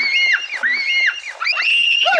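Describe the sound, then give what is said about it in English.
Scared twins in a film clip scream together in long, wavering, high-pitched shrieks that rise and fall, overlapping almost continuously with only brief dips for breath. The screams stay loud throughout. “All right, here's those twins being all scared.”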